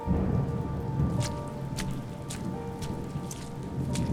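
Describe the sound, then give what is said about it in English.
Steady rain falls on a hard surface, with scattered louder drops spattering, over a low, continuous rumble like thunder. No one speaks. “During her first night outside in the rain, Little Rat's number had turned to mush.”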